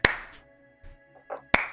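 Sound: slow clapping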